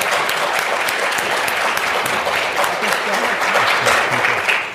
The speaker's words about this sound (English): Please hold applause. That was against the rules, but Walker's comments prompted the audience to break the rules. And I can tell you that the audience, generally from the John Locke Foundation, they were very, very interested in election integrity.